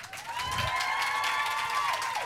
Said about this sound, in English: We can't also wait to meet the cast of The Musketeers. Please welcome on stage with a big round of applause, first of all, to Luke Pasqualino.